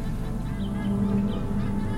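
A few faint seabird cries rise over a steady wash of ocean surf waves, brief and scattered rather than rhythmic, with no one speaking.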